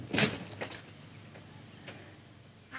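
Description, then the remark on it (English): The front door of a modest one-story house in Independence, Kansas, is opened: a sharp rattling scrape at the start, then a few faint clicks and soft knocks against a quiet background. “Somebody's opening the door.”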